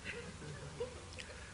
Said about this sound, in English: Which, think about this while I take a drink of water.